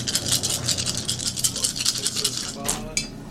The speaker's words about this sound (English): So that should be 8 d6 total. Yeah. Do you need to borrow d6s? No, I know. And you're about to roll 8 damage by rolling 1 on all those dice.